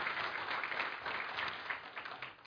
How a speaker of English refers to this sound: I think we just can give them a round of applause this morning for just every month that they help. God bless you.